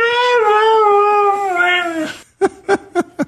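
Mishka, a dog famous on YouTube, lets out a long, wavering, slowly falling howl, then three short rising yowls in quick rhythm, sounding almost like spoken words. Loud, with no other voices.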